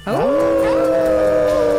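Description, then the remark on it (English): Several people howl together in imitation of dogs, howling at the Moondog on a count of three, voices sliding upward into one long, loud, sustained wail that holds steady for nearly two seconds. “We is all going to howl at the Moondog on the count of three.”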